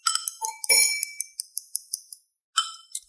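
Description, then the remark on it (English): A glass is grabbed while making a drink: bright glassy clinks and taps ring out in a quick irregular series, about a dozen sharp high-pitched hits with short ringing tails, then a brief pause and a few more clinks. “So what I'm going to do with it now is I'm going to grab our glass.”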